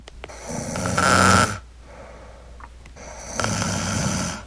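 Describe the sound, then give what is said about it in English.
A woman snores in two long, rasping breaths separated by a quiet pause, each inhale building to a loud, rattling rumble. Clear, with no talking. “I have some tape of her snoring.”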